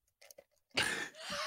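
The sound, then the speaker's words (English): A person blows their nose: two forceful, breathy honks in quick succession, the first loudest, after a few faint rustling sniffs. No one speaks. “Why go blow my nose? Hold on.”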